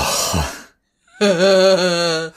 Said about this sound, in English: he says with long pauses between the coughs.